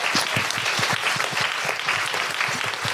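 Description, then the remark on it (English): An audience at a live evening show claps steadily, dense overlapping hand claps forming a loud, continuous wash of applause with no voices standing out. “A big round of applause for Amy in the lighting booth.”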